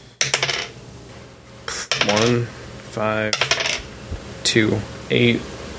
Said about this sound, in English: And I am just going to roll a bunch of dice now.